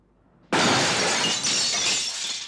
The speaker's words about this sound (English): And there's no music for a good few beats there when he's going through the window, crashing, laying there. There's no music. There's no score.